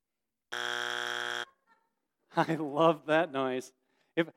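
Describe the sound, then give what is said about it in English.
A game show wrong-answer buzzer blares once, a loud, flat, raspy tone lasting about a second, then a brief pause before a person starts talking. “I had to have the buzzer noise in today.”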